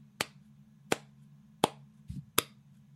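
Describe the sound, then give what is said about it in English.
A slow clap: four sharp, crisp claps spaced evenly apart at a deliberate pace, with a low steady hum underneath and a soft thud just before the last clap. No one speaks. “A slow clap from the back that I hope is going to pick up some speed”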